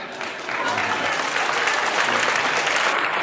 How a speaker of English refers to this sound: I have no idea why they're clapping here. This is kind of weird.